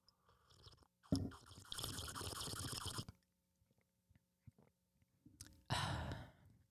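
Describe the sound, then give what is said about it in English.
Hot cocoa sipped close to the microphone: two loud, breathy slurps, the first about two seconds long, with faint small swallow clicks in the quiet gap between them. “I'm purposely drinking close to the mic so it sounds cool.”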